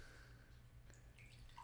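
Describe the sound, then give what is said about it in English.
Soda pours with a soft, crackly fizz and not much foam, a couple of brief bubbly chirps rising near the end, all over a steady low background hum. “Not as much foam.”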